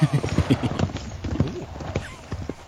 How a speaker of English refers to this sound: A knight charges up the slope at you. His horse pounds at the ground, carrying the heavily armored warrior as if you were a child's doll.